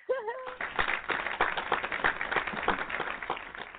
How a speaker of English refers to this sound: I can see it's always something with the damn sound switchboard lately. Can I get my damn hand clap, please?